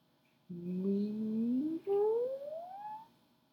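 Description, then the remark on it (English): A human voice imitates a cat's meow in one long, drawn-out call that rises in pitch, with a brief catch midway, clear with no talking around it, made while doing the cat pose of an exercise. “And then cat pose, add a little meow. And go back and forth with your breath and your cow sounds. or your cat sounds.”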